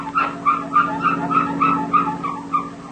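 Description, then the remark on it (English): A family car squeaks and squeals for want of a lubrication job, about ten high, whiny chirps in a quick, uneven rhythm over a low, steady hum, with no one talking. “Does your family car ever make noises like this?”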